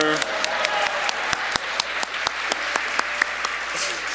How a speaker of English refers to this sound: So, let's return to the... stop clapping. Let's return... No, no.